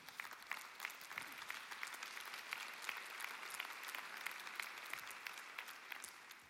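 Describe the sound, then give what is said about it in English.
Steady audience applause, a dense patter of many hands clapping at a fairly even level throughout, with no voices standing out. “You won't be clapping in a half hour when I'm still going.”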